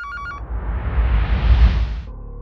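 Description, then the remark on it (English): A short burst of an electronic telephone ring warbles at the start, then gives way to a swelling, rumbling whoosh that fades into a low hum. “But one day, his phone rang.”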